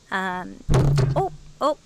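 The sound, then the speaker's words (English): A dull, heavy thud as something gets knocked over outdoors, landing between short hooting, tonal vocal sounds that come before and after it. “It's getting a little rowdy. We're knocking things over.”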